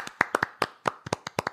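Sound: applause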